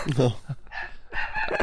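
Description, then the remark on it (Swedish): A dog barks in a few sharp bursts, loud and insistent, with short gaps between the barks. “Vänta, jag ska bara säga åt hund.”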